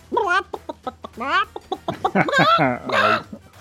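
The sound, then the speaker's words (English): A person imitates a clucking chicken with a rapid run of bright, choppy squawks and clucks, fairly loud, rising into a few longer drawn-out cackles at the end. “chicken. A crane is an elegant bird. A chicken is a flying lunch.”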